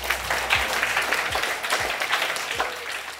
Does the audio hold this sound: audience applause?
yes